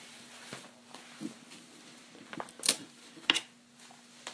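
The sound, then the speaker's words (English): A dog bark collar is picked up and moved off a table: soft shuffling, then two sharp plastic clicks a moment apart, over a faint steady hum with no talking. “And I'm moving my dog's bark collar off my table.”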